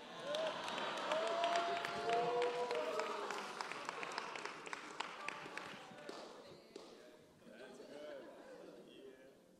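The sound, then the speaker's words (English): An audience claps to show they are fans of a musician, in a dense, sustained burst of applause with crowd chatter and a few whoops mixed in; the clapping stays loud for several seconds, then thins to scattered claps and voices. “If you're a fan, clap loud and proud.”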